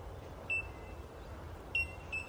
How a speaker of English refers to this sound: But these bellbirds are pretty fantastic.